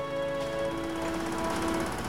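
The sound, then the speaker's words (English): Loud, steady mechanical pounding from a pile driver or similar heavy machinery, with a rapid repeating rhythm over a droning engine hum that holds a couple of sustained tones throughout. “Nobody likes the booms and cracks of pile drivers and air guns.”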